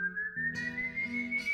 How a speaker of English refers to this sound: As he approached his house, he could hear his son's whistle, and it just made him dread coming home empty-handed all the more.